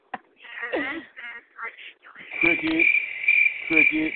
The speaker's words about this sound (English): Cricket. Give me them crickets up.